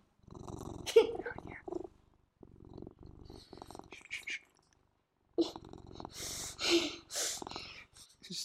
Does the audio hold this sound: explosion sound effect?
no